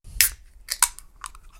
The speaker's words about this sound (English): Let's get this beer open then.